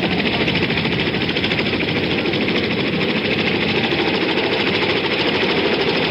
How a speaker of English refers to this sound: As evening approached, Ambassador Martin emerged to join the others in making the flight to an American aircraft carrier some 40 miles offshore. More than 80 helicopters shuttling people out to the carriers.